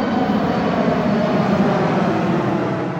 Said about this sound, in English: But when a plane flies low over the amphitheater, and I mean really low, all you hear is this.